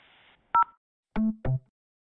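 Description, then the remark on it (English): Two quick, clear touch-tone keypad beeps as options are pressed in an automated telephone menu, then two slightly longer, lower and buzzier tones in succession, heard alone over a faint hiss with no talking. “Press or say 2 to continue to the main menu.”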